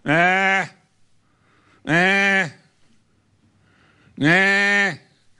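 Three loud, wavering sheep bleats, each lasting about half a second, arrive at an even pace with short quiet gaps between them. The calls are clear, with no talking.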